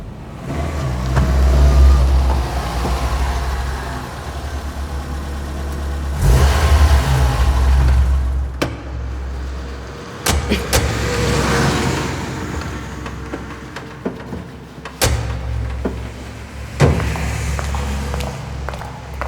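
A car engine rumbles as the vehicle drives along, rising and easing off, then slows and pulls up, with a few sharp clicks and knocks near the end.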